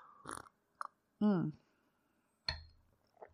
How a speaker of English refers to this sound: Also, I'm going to take a sip of my tea that I have in front of me.